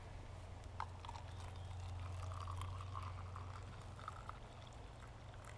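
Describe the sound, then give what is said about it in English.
A steady pour of black tea into a cup, a continuous splashing trickle lasting several seconds with a low rumble underneath and no voices. “I've tried to make it as noisy a pour as I could.”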